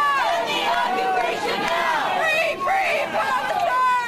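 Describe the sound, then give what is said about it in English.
A loud protest crowd calling for Ahed's freedom fills New York's Pennsylvania train station, many overlapping voices shouting and calling out at once in a dense, continuous roar of raised, high-pitched cries. “Listen to the scene inside New York's Pennsylvania train station.”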